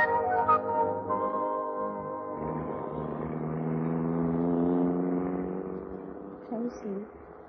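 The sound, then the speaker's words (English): A car engine hums and revs on an island, its drone building and holding steady as the vehicle pulls away, then easing off toward the end. “Take them to the car, Angela, and let's get going.”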